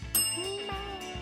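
A bell rings out with a bright, sharp strike and lingering, shimmering overtones, followed by a couple of softer repeat strikes as the tone keeps sustaining. No one speaks.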